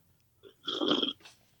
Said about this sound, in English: I just took a huge sip of coffee right in the microphone. I'm so sorry, everybody.